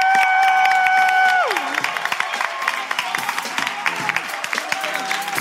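An audience claps steadily and densely throughout, with a sustained high whoop that slides down in pitch early on, followed by scattered cheers under the continuing applause.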